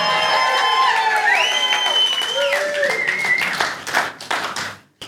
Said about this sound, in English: I saw who was clapping and who wasn't.